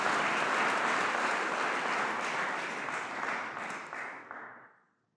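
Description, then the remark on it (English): A crowd applauds steadily for about five seconds, the dense clapping holding at an even level before tapering off and ending abruptly. “Well, okay, a round of applause.”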